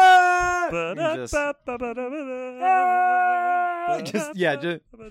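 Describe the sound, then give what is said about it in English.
A voice imitates a jazz trumpet in a 'scream jazz' style, wailing and screaming sustained, wavering notes with sliding pitch and vibrato, loud and continuous with brief breaks, ending in a few sharp, squawking blasts. “I'm the only one doing scream jazz.”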